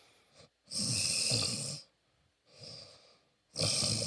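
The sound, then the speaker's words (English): A person uses their voice to imitate someone's deep-sleep snoring, made on the exhale from the belly: three loud, rough breaths in a steady rhythm, each a gravelly rumble mixed with airy hiss, with no talking. “It don't go in the inhale, it come in the exhale. I don't even know how to snore on the exhale, but it be like.”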